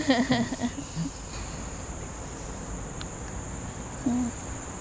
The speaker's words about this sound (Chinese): 嗯，这边是知了的声音吗？ 有知了的声音。